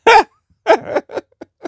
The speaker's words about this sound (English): I already have the hiccups here, bro.